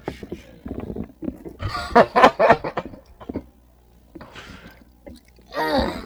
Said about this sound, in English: Stop burping into the damn mic.